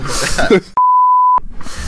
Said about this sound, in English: Just said it again. Yeah, beep it twice. Nice. A lot of bleeps in this podcast.